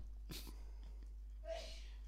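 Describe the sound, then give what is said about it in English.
A faint sneeze in the background: a short breathy burst, then a voiced, hissing release a moment later, quiet. “The sound of someone else sneezing in the background, that's good.”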